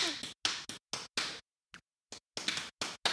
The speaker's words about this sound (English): it could be a bunch of things. It could just be a slap at her fucking knees.